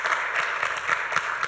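An audience applauding: a steady, dense wash of many hands clapping together at moderate loudness, with individual claps faintly standing out in an uneven rhythm and no voices.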